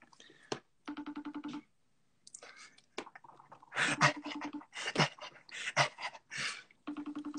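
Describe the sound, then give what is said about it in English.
A FaceTime video call ringtone chimes in repeated melodic bursts, fairly clear, while a dog pants and whimpers loudly over it, with no one talking. “But should I give him a FaceTime again? Okay, I'll try to call him again.”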